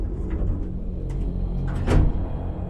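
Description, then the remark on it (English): A voice imitates a sliding door opening, a steady breathy hiss that swells briefly into a louder whoosh near the end, with no words spoken. “That's the sound I make because the door is quiet.”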